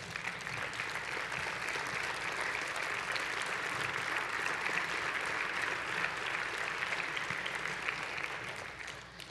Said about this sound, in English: It's good being in the house of the Lord. Let's stand, give the Lord a clap offering. Would you do that?